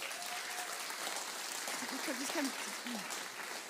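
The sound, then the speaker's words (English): A church audience breaks into steady, dense applause for three people invited up to join the speaker, filling the whole stretch at an even level, with a few faint voices calling out partway through. “So round of applause for these guys.”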